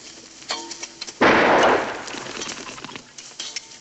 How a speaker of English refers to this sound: This is where we get a decent introduction to Boss Godfrey, where he gets his rifle to shoot the bird.